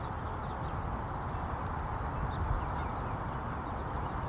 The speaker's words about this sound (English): There were wildflowers, grasses, and pickleweed everywhere, and I spent some time just taking in the sounds of the birds and the bugs.